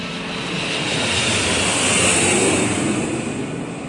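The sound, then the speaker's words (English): A loud, piercing whine of a low-flying jumbo jet heading down the Hudson River along the west side of Manhattan around 8:45 a.m. at nearly 500 miles per hour, a steady high-pitched roar that swells to a peak midway and then eases slightly, with no voices. “Around 8:45 a.m., the people along the west side of Manhattan heard a piercing whine of a jumbo jet making its way down the Hudson River.”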